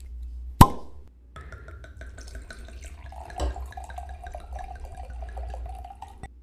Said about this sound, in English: And yeah, so I'm just going to open the bottle real quick. Hopefully you'll hear the pop, and I'll pour myself a glass.